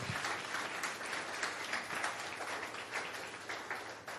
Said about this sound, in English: Give the Lord a big clap of praise. Hallelujah.